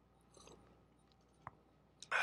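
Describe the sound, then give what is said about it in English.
A quiet sip from a glass of rye bourbon on a Monday evening: soft slurping and wet mouth clicks in near silence, followed by a single sharper click and a brief louder burst at the very end. “And with that, little sip,”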